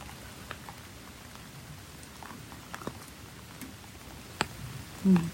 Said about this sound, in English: Coming to you from the shores of Gichigami, the big lake, the beautiful rainy fall day here. I'm seeking shelter under the grandfather tree.